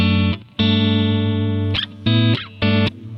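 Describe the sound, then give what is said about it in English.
An electric guitar with a clean, dry tone and no reverb, played through a John Mayer prototype amp profile, plays a few loud, sustained chords one after another, each ringing out before a short break and the next strum, with no voices present. “So this is my clean tone.”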